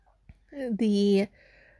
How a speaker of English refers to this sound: But yeah, I don't know why he's still meowing. Sorry. Sorry, everybody. The kitten is very vocal.